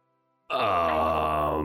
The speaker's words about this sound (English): but either way, Ham, Krog, and Stub, you hear what sounds like a howl in the distance.